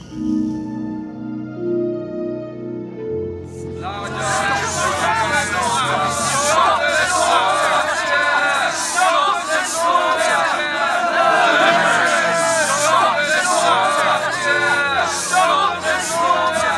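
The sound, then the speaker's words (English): A crowd of many voices shouts and chants together outside a building in a dense, continuous roar, starting after a few seconds of quieter low sound and staying loud throughout. “Just stand outside the building shouting stuff.”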